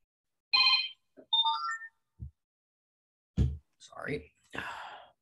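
A phone ringtone plays a short electronic melody, a bright tone followed by quick rising notes, at moderate volume. Breathy, whisper-like noises and soft rustling come after it.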